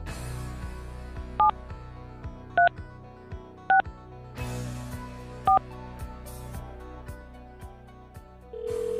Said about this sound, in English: I'm just going to call. Just dial the number. That's it. Yeah. I'm going to dial the number.